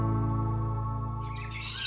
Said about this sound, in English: Those are birds.